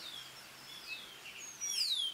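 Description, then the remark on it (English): Wild birds on the island of St. Lucia sing and chirp with high, sweeping whistles and trills, several calls overlapping at moderate volume, one clearer song rising near the end over a faint outdoor background. “St. Lucia has more than 160 different birds, and there's been research that shows birdsong can improve cognition and increase productivity.”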